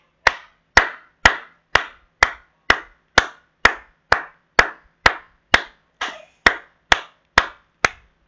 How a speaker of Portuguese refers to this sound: as minhas palmas para vocês duas.